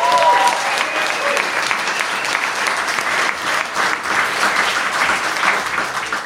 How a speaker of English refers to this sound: And thank you to you guys. Give yourself an amazing cheer. Come on.